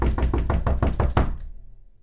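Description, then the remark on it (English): A rapid series of about six loud, heavy knocks pounds on a door in quick succession, then stops, leaving a brief fading silence. “All right, don't knock the door down.”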